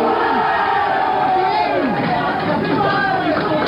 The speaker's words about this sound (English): Door is opened. A huge crush at the doorway. Can't see exactly what's going on inside.